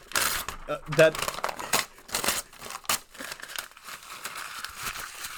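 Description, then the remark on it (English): A large sheet of paper is loudly torn and crumpled, with sharp ripping bursts followed by a continuous crackly crinkling that fades into softer rustles. “I took a big piece of paper and exaggeratingly over exact.”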